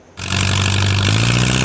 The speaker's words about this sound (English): In case you've not seen this, behold the tractor pull. To move this heavy sled down the track as far as you can. In the world of competitive pursuits, it's exactly as advertised. This was a special competition at a Langley dairy farm Saturday.